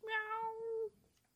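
A single drawn-out cat meow, clear, lasting nearly a second with a steady tone before trailing off into quiet background.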